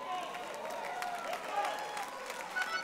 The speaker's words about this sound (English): Go ahead and clap, even if you don't understand it. This is so good.